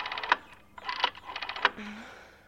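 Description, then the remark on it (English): A woman turns an old-fashioned rotary phone dial with her fingers to call an ambulance, giving rapid mechanical clicking and ratcheting in short bursts, then whirring back, fairly quiet with no voices. “She used every last speck of her energy to turn the old-fashioned circle-shaped dial with her fingers.”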